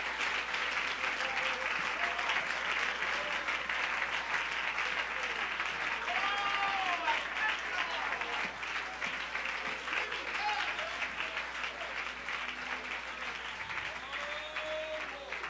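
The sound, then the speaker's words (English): An audience claps hands in dense, steady applause that holds loud and even for about fifteen seconds, with scattered voices calling out beneath the clapping. “Give him a hand clap, would you, everybody?”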